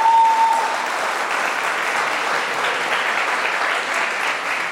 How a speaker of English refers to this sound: So let's give him a warm round of applause.